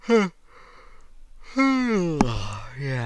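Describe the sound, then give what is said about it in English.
A person yawns: a short vocal catch, a breathy inhale, then a long, drawn-out voiced groan that slides in pitch as it trails off. “I'll have to talk about this more another time when I have more time, because I want to make this quick before I start having a yawn fit. But here comes one now.”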